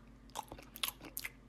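Crunchy chewing with a handful of sharp, irregular bites and mouth clicks, fairly quiet and with no voices over it.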